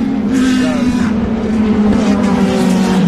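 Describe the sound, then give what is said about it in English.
High-revving petrol racing car engines scream past at racing speeds in a continuous, loud wail with a steady pitched whine over a low rumble, no pauses, dense, like cars streaming by on a circuit. “You probably already noticed that the Peugeots and the Audis make almost no noise whatsoever, and it's the petrol cars screaming.”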